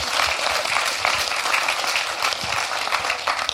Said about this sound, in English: Big round of applause for doing that job. It was a really important job.